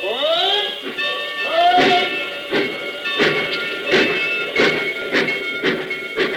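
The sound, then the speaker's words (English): A train pulls away: a whistle sounds and bends in pitch at first, then steady rhythmic chuffing and clanking bursts repeat about every half second beneath a sustained tonal hum, loud. “I mean, do I see the man who just got off that train?”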